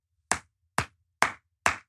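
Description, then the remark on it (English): Four sharp, crisp hand claps in a slow, even rhythm, each one a bright smack with a quick fade, heard alone with no voices. “Slow clap for Joe Biden gradually turning into Donald Trump.”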